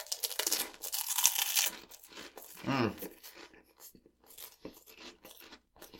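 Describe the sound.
Loud crunching of crisp food being bitten and chewed, with dense bursts at first, a brief voiced murmur midway, then scattered softer crunches and clicks.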